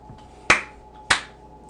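Three sharp, crisp hand claps at a slow, even pace, roughly half a second apart, with no voices, just a faint steady hum underneath.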